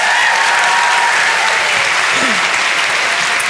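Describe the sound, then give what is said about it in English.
A live audience claps to welcome author Clementine Ford, a dense, loud wash of many hands that stays even for a few seconds with no one speaking over it. “So let's have a conversation, people. Round of applause.”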